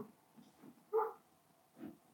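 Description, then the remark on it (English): A neighbors' dog behind an iron fence barks once, a short, faint yelp, followed by a softer second bark-like sound a moment later against a quiet background. “Can you hear the dog?”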